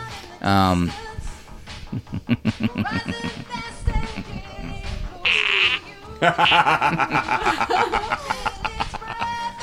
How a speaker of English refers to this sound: Oh, this fart machine is giving us too much joy. Too much joy. That should not make me laugh as much as it is.